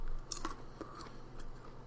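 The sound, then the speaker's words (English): Quiet crunching and munching, several short crisp bites and chews at an uneven pace over a low steady background, with no one talking. “I'm sorry I'm munching when I'm doing this stuff.”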